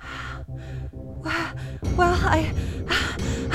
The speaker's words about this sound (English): Well, I started heavily breathing again. Oh, breathing exercises.